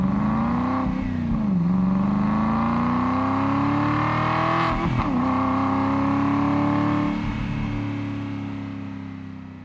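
A car engine revs up and climbs in pitch, dipping briefly as gears shift before rising again, loud throughout, then easing off slightly at the end. No one speaks.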